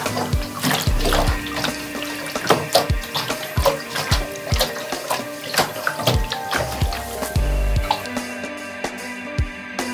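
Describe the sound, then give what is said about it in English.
Water sloshes and splashes inside a scuffed plastic water bottle holding a little water, in a run of uneven shakes with hollow knocks and gurgles, continuing steadily for several seconds with no talking. “It's a water bottle, and it's made of plastic, and it's quite scuffed around the edges.”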